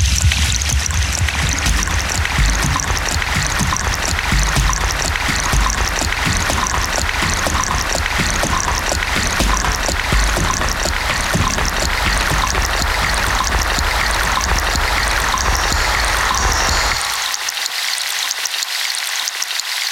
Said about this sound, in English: I love the dynamic movement of the water from one side to the other, and I feel like it's coming over my head and then swishing around to the side of me. So I feel really immersed in the water.